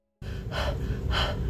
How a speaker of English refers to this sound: When we're anxious or stressed, our breathing often becomes shallow, rapid, and focused in the upper part of our chest, sounding a lot of times like this.